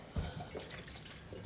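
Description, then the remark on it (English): Peach schnapps pours from a bottle in a steady stream, one cup being measured, starting with a soft thud and splash and then running on as a continuous trickle. No one speaks. “1 cup peach schnapps. Oh. Tom's least favorite drink. All right, it pours too slow with the pourer in it.”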